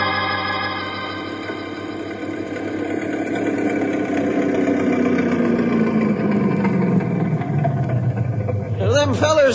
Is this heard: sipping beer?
no